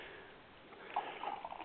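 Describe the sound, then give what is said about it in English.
Andre California Champagne being poured into a big glass, a soft gurgling pour with a fizzy hiss that swells slightly toward the end. No one speaks. “And even though it's, I harshly judged it initially, I am pouring another big glass of it.”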